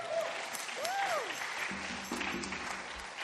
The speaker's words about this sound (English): And it's even cooler that we have the building to do stuff like this now. So let's have a round of applause for that, huh?